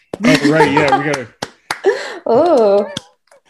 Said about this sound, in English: Yeah. Awesome. Welcome. We'll clap.